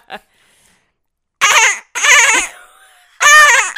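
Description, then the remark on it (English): A voice imitates a dolphin in three quavering, high-pitched bleating bursts, loud and wobbly, sounding more like a baby goat's bleat than a dolphin, with short pauses between them. “That sounds more like a goat. Oh, it's like a baby goat.”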